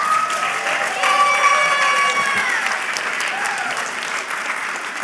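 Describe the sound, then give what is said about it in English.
An audience applauds as couples are introduced, steady dense clapping holding for about five seconds, with a few scattered cheers and voices rising over it before it begins to thin slightly. “I might say hold your applause to the end because this will sound a lot like a popularity contest.”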